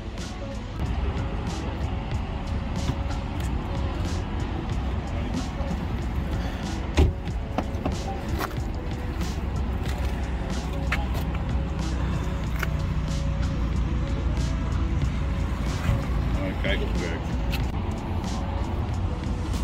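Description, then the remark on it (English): Outdoors at a Tesla supercharger in Breukelen, Netherlands, beside the busy A2 highway between Amsterdam and Utrecht, where a Polestar 2 car is being charged: a steady, heavy traffic roar fills the background, broken by occasional light clicks and a single sharp knock or door thud. “And we're here at the Tesla supercharger in Breukelen, situated at the A2 highway between Amsterdam and Utrecht.”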